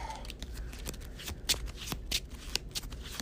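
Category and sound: household object, shuffling playing cards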